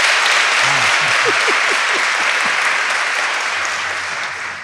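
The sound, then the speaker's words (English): An audience at an evening event with Joy DeGruy, first-time attendees clapping, applauds loudly in a dense, steady wash of clapping that lasts several seconds, with a few brief voices calling out early on, then eases off slightly toward the end. “If this is the first time that you've had the pleasure of sitting in her presence, could you clap for us, please?”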